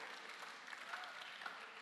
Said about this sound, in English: Hey, are you clapping? Are you clapping?